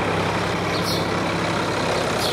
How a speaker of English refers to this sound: Now we've not far to go, so it seems like there's only one way to get to the farm today. By tractor. Look at this one. Wow, it's green and so big. The back tires are bigger than you.